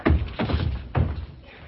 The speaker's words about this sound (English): Ola pushed Medoc through a door, locked it, and moved off.